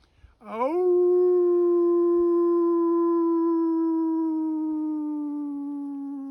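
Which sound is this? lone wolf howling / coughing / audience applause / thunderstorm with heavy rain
lone wolf howling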